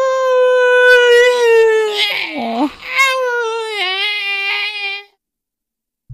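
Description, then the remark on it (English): A voice imitates an eerie, wailing song for about five seconds, a sustained high tone that warbles and dips in pitch, with breathy hissing bursts mixed in, then cuts to silence. It mimics the horrible, hissing, haunting singing noise a writhing thing makes as it sinks into a pool. “And as it goes, it makes kind of like this horrible, hissing, haunting, singing noise as it goes”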